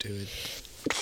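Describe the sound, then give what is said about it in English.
A brief spoken phrase, then a single sudden sneeze bursts out near the end, sharp and breathy, over a faint background hiss. “I have to sneeze.”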